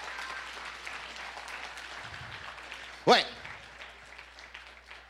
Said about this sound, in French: Si tu le crois, donne une bonne main d'acclamation. Come on.